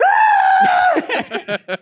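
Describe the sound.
A person imitates a Pokémon from the Pokémon show that just makes a human scream in pain: a loud, sustained scream holding one strained pitch for nearly a second, then several short, rhythmic bursts of laughter.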